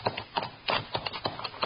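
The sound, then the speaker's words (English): Horses' hooves clip-clop on hard ground in a quick, uneven rhythm of sharp knocks, moderately loud, with no one speaking, as Bill Hickok and Jingles ride their horses, including one called Joker, toward huge boulders at the mouth of a canyon. “Tie the horses so they can't move out and get hit.”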